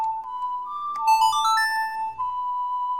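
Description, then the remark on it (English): A bright electronic "you did it" success chime from a video game, rising bell-like notes over a steady sustained tone, lasting a few seconds with no voices. “Cause what, it made the chime both times.”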